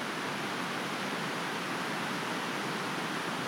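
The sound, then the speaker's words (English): A steady, dense roar of rushing water from hundreds of mini waterfalls tumbling down a series of steps by the ruins of an old mill, constant with no pauses or voices. “You hear the roar of it. Hundreds of mini waterfalls.”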